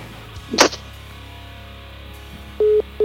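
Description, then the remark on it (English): A sharp click of a phone line hanging up on the Ollie's Bar and Grill soundstage phone system, then a quiet pause before a loud, steady electronic beep repeats as the call-disconnect tone begins, with no voices. “Ollie's Bar and Grill soundstage phone system cranked all night long.”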